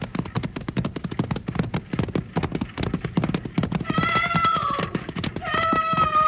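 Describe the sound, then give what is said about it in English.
A runaway team of horses pulling the Seatonville stagecoach, with no driver in the seat, gallops hard, hooves pounding in a fast, continuous, loud clatter; midway a shrill, drawn-out neighing rises over the hoofbeats and repeats toward the end. “We gotta stop those horses.”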